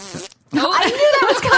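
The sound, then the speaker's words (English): A voice blows a wet, buzzy raspberry imitating a fart, a short burst, then a brief gap before a longer sputtering stretch, loud, with laughter or chatter mixed in. “Nothing's funnier than a fart joke.”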